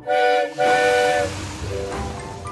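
A loud steam whistle blows in two close blasts, shrill and harmonic with a breathy hiss, then fades into rumbling, chuffing engine noise.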